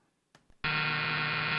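A loud, harsh quiz buzzer sounds abruptly after a couple of soft clicks and holds steady, a raspy electronic drone continuing to the end without pause.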